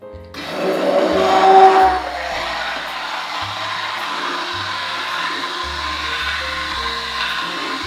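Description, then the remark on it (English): A hand blender whirs steadily through a thick vegan vegetable soup, blending the vegetables into the broth, louder at first with a sharp surge, then settling into a continuous motor drone that runs on without a break. “So I'm just gonna take my hand blender and just blend it all up.”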